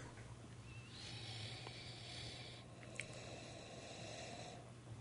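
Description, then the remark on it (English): Two long, breathy sniffs taking in the aroma of a beer, drawn in at the microphone one after the other, over a steady low hum, with no talking. “See, I've taken a couple aroma sniffs now, and I'm getting it's the upswing.”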